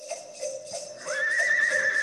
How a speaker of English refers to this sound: All Clydesdale noises.